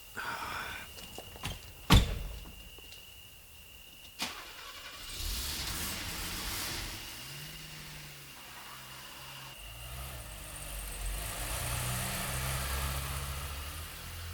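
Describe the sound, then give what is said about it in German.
A couple of sharp clicks like a car door, then a man's car engine cranks and starts, revving as the car pulls away and drives off in the dark, with a steady rumble and road noise lingering. “Der Fremde geht zu seinem Wagen zurück.”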